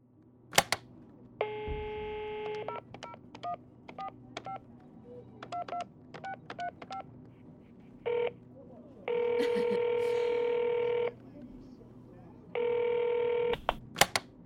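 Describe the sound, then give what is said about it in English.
A phone call to a lawyer: a ringing burst, then a quick series of dialing beeps, followed by longer electronic ringing tones that repeat in steady bursts over a faint background hum. “We got this lawyer phone call.”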